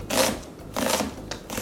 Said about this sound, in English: Onion out of control, bad thing. But kind of a, I guess a medium dice, half quarter inch, just roughly chopped, let's just call it, okay?